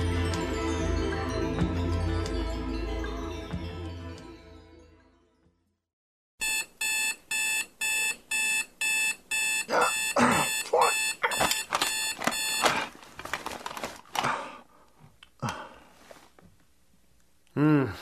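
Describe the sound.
Music fades to silence, then a loud alarm clock set for 3 o'clock in the morning starts beeping in rapid, evenly spaced bursts, continuing as someone begins talking over it.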